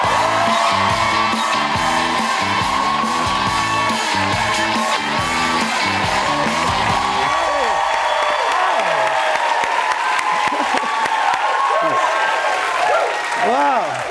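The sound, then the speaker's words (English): Loud, sustained applause from a TV talk show studio audience welcoming actor and comedian Arturo Castro, a dense wash of clapping with scattered whoops and cheers, and a band playing underneath for the first half before it drops out. “I just hear a clap.”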